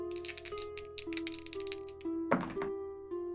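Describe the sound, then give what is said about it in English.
Two six-sided dice rattle with a quick run of sharp clicks, then clatter to a stop with a louder tumbling burst near the end, over a soft steady musical hum in the background. “I'm going to take my 2d6 and we are going to roll this face duress and see what happens.”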